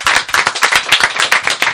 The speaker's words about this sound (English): That's right. We're so shallow, we'll applaud ourselves.